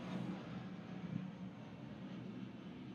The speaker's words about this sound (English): Okay, it sounds like a small plane. So I think it is the 920. No, it's leaving, right? So it's the 910. It's going out to Hawaii.